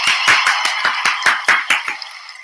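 Audience applause with a steady, rhythmic beat, roughly ten strong claps over a dense wash of clapping hands, thinning out and fading toward the end. No voices are heard.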